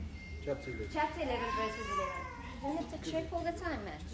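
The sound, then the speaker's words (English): A cat chirps and meows almost continuously, a run of bright, warbling, rising-and-falling trills over a steady low hum. “With a mic, I don't really hear the chirping. Now the chirping's nonstop.”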